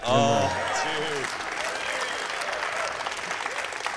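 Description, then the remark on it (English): A large live crowd applauds and cheers steadily on a live album recording, a dense wash of clapping that holds at a fairly loud level, with a brief whoop or voice rising above it at the very start. “I knew that because our live they're applause. They're cheering for me.”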